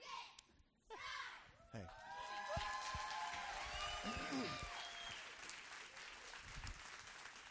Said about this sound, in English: So, hey, give these guys a hand. And you guys want to give us a cheer as you walk off this morning? All right. They're going to cheer on the way out.